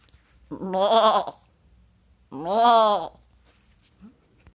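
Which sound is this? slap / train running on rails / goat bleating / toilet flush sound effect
goat bleating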